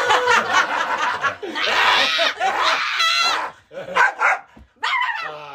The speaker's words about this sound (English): Dog is chewing on me currently.